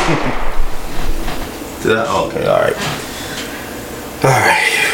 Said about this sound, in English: Damn, I get gunshots. You get more gunshots, sir.